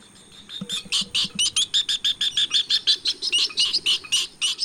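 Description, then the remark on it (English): A rapid, rhythmic series of loud, harsh chattering bird calls from a northern jacana, about four notes per second, continuous, with no one speaking. “The northern jacana, found in Mexico, Central and South America, and Cuba, and the bird with the longest toes relative to its body size of any bird.”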